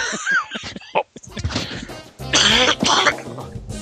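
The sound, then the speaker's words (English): Loud laughter breaks into rough coughing, the wheezy giggles and harsh hacking bursts tangling together in uneven fits, with no speech in between. “Laughter and coughing does not mix.”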